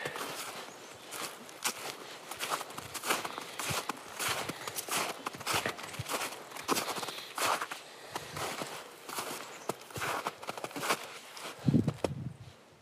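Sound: footsteps walking outdoors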